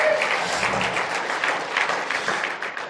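A crowd applauds steadily for the full stretch as a guest comes up onto the stage, a dense, even wash of many hands clapping at once, loud and sustained with no voices standing out.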